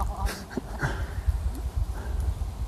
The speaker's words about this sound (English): Hello! A dog with a ball, by the way, folks, yeah.